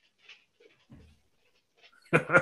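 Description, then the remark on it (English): A dog that has just let itself in where the speaker is pants softly in a few short, quiet puffs, then lets out a sudden, louder whimpering whine at the very end. “The dog's just decided to let itself in where I am.”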